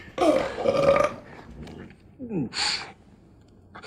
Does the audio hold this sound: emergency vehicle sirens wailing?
no